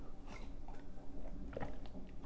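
Someone takes a sip of tea, with soft slurping, swallowing and faint mouth noises over a low, steady background hum. No one speaks.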